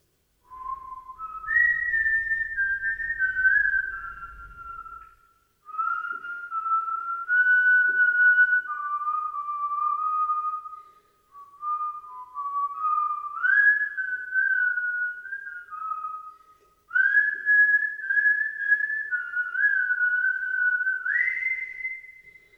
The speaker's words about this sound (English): Then he began to whistle.